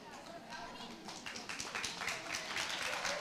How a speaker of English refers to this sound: Are we clapping for more Jesus? I like it.